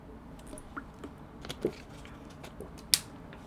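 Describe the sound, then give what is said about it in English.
Quiet sips of Poland Spring spring water from a plastic water bottle, with soft squishy gulps, faint crinkles and scattered clicks, then one sharp plastic crackle near the end. No one speaks. “Cause that's what I'm drinking. I'm drinking some Poland Spring water.”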